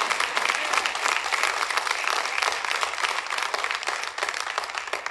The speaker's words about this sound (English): Now that's when you should clap.